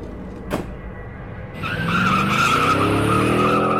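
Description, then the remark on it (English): A getaway car's engine revs up and a sharp squeal of skidding tires rises as it speeds off, loud and sustained, preceded by a brief thump. “Getaway cars have become my thing.”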